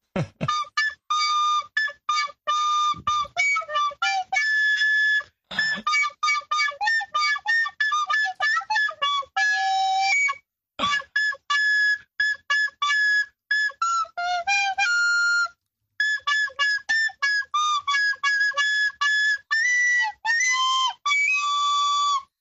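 Jingle Bells played on a shrill, whistle-like instrument: a steady run of quick, bright notes with short gaps between phrases, clear and fairly loud, with no voices.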